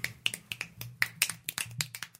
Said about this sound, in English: Cool. Nice finger snaps.